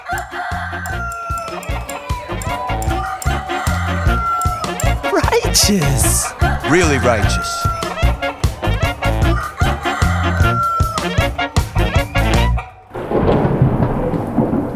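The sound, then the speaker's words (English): A rooster crows repeatedly on the road outside, over a thumping, rhythmic beat, with deep rumbles of thunder, a voice speaking briefly, and a hiss of rain taking over at the end. “Man, now we have a rooster rapping on the road outside.”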